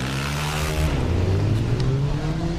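Several engines of motorbikes, big trucks, collector's cars and monster trucks rev and rumble together at a group ride, loud, with rising and falling harmonic whines layered over a heavy low growl, continuous throughout with no talking.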